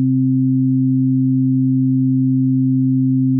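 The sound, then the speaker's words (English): A steady, low-pitched sine tone, around 100 hertz, hums continuously at an even volume for several seconds with no variation and no voices. “Maybe a low-frequency sine wave around 100 hertz?”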